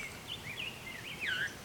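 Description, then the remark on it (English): A vireo sings short, slurred whistled phrases, two brief bursts separated by a pause, fairly faint over a soft outdoor background with no talking. “This vireo is still going.”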